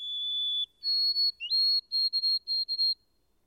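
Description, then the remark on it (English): A white-throated sparrow sings clear, pure whistled notes: one long steady tone, then a step up to a higher pitch, followed by a run of short repeated notes, loud and with no other sound. “I at last discovered that it was the white-throated sparrow, a common bird all through this region.”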